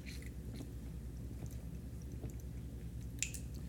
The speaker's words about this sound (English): All right, going to take a quick hydration break here. You got water near you? Drink up, man. Hydrate.